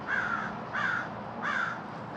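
A crow caws three times outdoors at about 4 in the morning in a steady rhythm, each harsh call roughly evenly spaced, clear over a low background hum with no voices.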